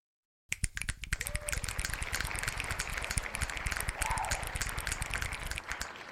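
A dense, rapid patter of sharp finger snaps and hand claps starts abruptly and keeps going as a busy, crackling wash of quick overlapping clicks at steady loudness, with no voices.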